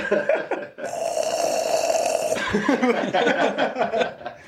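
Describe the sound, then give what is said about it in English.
A voice imitates a loud snore, one drawn-out rasping snort lasting over a second, prominent, with brief chuckling or voices just before and after. “I guarantee I'm snoring. And dude, that's got to scare deer away.”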